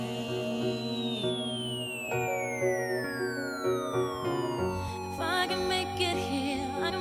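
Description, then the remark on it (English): Layered siren tones sweep and wail continuously over a dense, steady hum of street noise, with pitches gliding downward and overlapping as several emergency vehicles sound at once. “There are sirens all around.”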